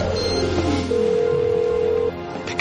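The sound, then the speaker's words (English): A telephone, John Casey's phone, rings with a steady electronic tone that holds for about a second, set against a busy background of low hum and clutter, with no one speaking. “Pick up your phone, Casey.”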